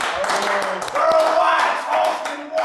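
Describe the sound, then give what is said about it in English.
A crowd claps steadily for a few seconds, a dense patter of overlapping claps with voices murmuring and calling out underneath, holding at a fairly loud, even level throughout. “Clap it up, clap it up.”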